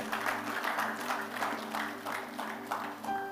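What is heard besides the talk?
audience applause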